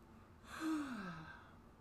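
A single drawn-out yawn, breathy and fairly soft, with a voiced groan that slides downward in pitch for about a second before trailing off. No one speaks.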